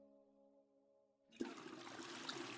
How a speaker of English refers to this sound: You hear a toilet flush.